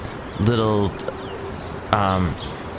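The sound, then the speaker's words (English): Two short, hooting bird calls a second and a half apart, made by a human voice imitating a cooing bird, fairly loud, with quiet background between them. “The one that's like it's kind of a bird? Maybe a frightened bird, I don't know.”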